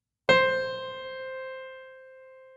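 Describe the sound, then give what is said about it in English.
A single note from an early piano of the kind pioneered in Florence by Bartolomeo Cristofori, its string struck by a padded hammer: a soft-edged attack, then a steady, bright tone with clear overtones that rings on and slowly fades. No one speaks. “The new piano hit it with a padded hammer.”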